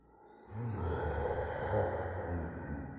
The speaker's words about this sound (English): And as the woman remembered who she really was, her eyes burned red. And she bared her teeth and let out a great roar.